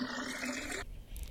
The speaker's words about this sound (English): You hear the sloshing of water as this rag is being thrown over your face, and they start waterboarding you, pouring water on your face.